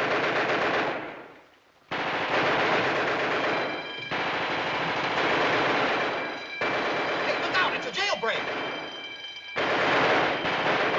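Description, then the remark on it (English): Loud, sustained bursts of rapid gunfire rattle on almost continuously, with a brief lull near the start and sharp cracks layered throughout, over a dense, noisy background with faint voices. “Hey, watch where you're aiming, will ya?”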